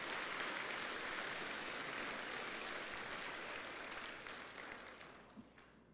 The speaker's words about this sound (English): Let's give them another hand clap. Congratulations.